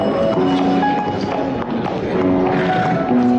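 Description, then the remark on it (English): A miniature horse's hooves clip-clop in a quick, uneven run of taps on a hard hotel floor, set against a busy, steady background of tones and indistinct murmur, in a Hotels.com commercial where Nikola Jokic and Peyton Watson walk into a hotel with the horse. “So this is one of the commercials with Nikola Jokic, Peyton Watson walking into a hotel with a miniature horse.”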